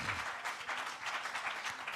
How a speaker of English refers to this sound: Let's give the Lord Jesus a hand clap together.